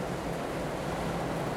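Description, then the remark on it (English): Steady rain patters on a parked car, heard from inside the car, a dense, even hiss of drops with a low rumble underneath, continuous and unchanging with no voices. “Just sitting here in the car, so I don't get fucking soaked while it's raining.”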